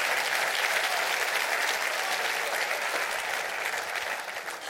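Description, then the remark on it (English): An audience claps their hands in loud, sustained applause, a dense wash of rapid clapping with no voices, holding steady before easing off slightly at the end. “Would you clap your hands real big all over this place?”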